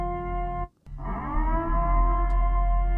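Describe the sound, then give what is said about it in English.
A purr sound effect: a loud, steady, buzzy drone rich in low harmonics that cuts out for a split second early on, then resumes and holds without speech. “Play that purr sound.”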